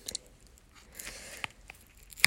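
Chewing honeycomb: wet, sticky mouth sounds with soft squishes and a few sharp crunchy clicks, fairly quiet, with no talking.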